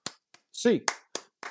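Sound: rhythmic eight-count clapping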